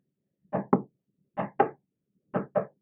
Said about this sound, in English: I was in my bed, and someone was knocking at my door.